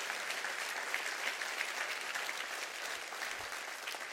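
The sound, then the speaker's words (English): An audience claps its hands to honor Dr. Martin Luther King, a steady, dense wash of applause that holds at an even loudness for about four seconds, with no voices rising above it. “Somebody clap your hands and say amen for that.”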